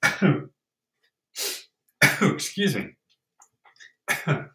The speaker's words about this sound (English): Dry sneeze. Sorry, didn't mean to shoot up there.